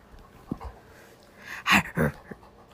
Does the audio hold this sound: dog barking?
yes